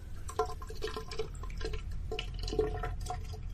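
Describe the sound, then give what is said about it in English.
Thick, wet water sloshes and gurgles continuously inside a tunnel, with scattered drippy plops and an echo. No voices. “It sounds like there's a water right inside of your skull.”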